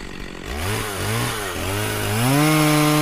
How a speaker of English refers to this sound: So, in other words, what you do is you take your mini chainsaw, right? And so you get that thing started. Hold on a second. Here we go.